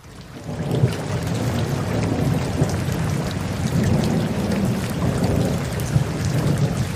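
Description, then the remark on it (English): Heavy, steady rain pours down at night as lightning strikes a launch pad, while low thunder rumbles continuously underneath, with a couple of slightly louder swells but no sharp crack. No voices are heard. “What was not favorable was last night when the launch pad was struck by lightning.”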